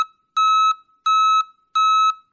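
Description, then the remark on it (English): A snow plow's reverse warning beeper in Ottawa, Canada sounds alone: three loud, steady electronic beeps at an even pace, each about a third of a second long with short silences between, following a brief opening chirp. “The city of Ottawa is changing the sounds its snow plows and trucks make when they back up.”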